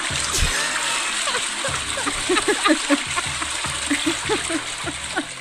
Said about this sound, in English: Let me get my toilet flush.